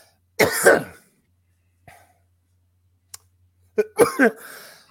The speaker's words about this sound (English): See, now you made me cough.